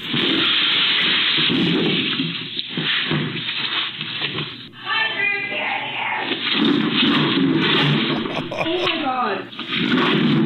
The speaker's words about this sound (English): A video is going viral of a wild deer breaking through the window of a Minnesota butcher shop. No. And basically crashing into everything it can find before he can get out. Here's a little bit of the mayhem caught on camera.